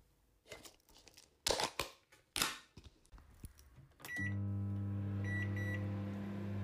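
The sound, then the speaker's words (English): Clatter and clicks of a microwave door and buttons, then the oven starts heating a lidded food container with a steady, loud electric hum, and a few short high beeps sound over the drone. “They fill me, they freeze me, microwave me, they take me out, put me through the dishwasher.”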